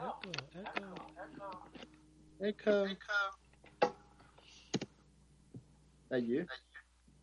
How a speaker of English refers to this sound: Echo. Is that you? No, it's mostly on your side. That's me. Okay. Oh, yeah, okay. I can't hear myself anymore.